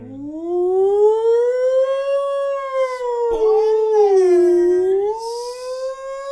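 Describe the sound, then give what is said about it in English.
A loud, continuous wailing siren sound effect, used as a spoiler alert, sweeps slowly up and then down in pitch for several seconds, sounding alone with no talking over it. “ring the spoiler alert siren.”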